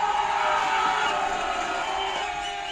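A large crowd cheers and roars continuously, a loud, dense wall of voices that stays steady for the whole few seconds, with no one speaking clearly.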